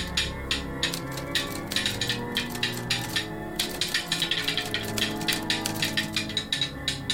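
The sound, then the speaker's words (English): Rapid, dense mechanical clacking of typewriter keys from a typewriter moving on its own in the corner of a room, writing a very fast message onto paper; a fast irregular stream of sharp strikes throughout, with no voices. “Very fast on the paper. I'm going to allow that to continue to write.”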